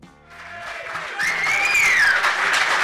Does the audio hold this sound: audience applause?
yes